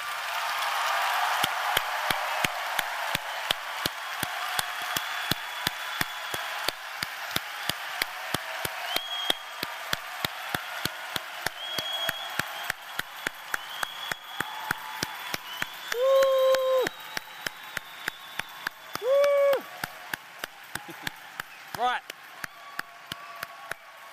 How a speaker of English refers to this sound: So if you call out the name of Jesus, you stand up with a youth leader next to you, where you are. And we're going to clap you now because we're rejoicing.